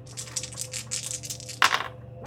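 Dice rattle quickly in a cupped hand as a player rolls them, a run of soft clicks, then tumble onto a table with a sharper clatter before going quiet. No talking.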